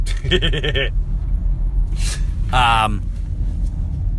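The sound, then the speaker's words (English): Two short bursts of a car navigation voice alert, warning of heavy traffic ahead, police on the right and a pothole, sound over a steady low rumble of a moving car. The prompts are clear, separated by a brief pause. “I don't know if you can even hear it, but like, I'm getting all dead serious with you, and out of nowhere it's like, heavy traffic ahead. Police on the right. There's a pothole.”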